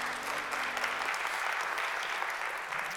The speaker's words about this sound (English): Come on, let's give God one more hand clap of praise.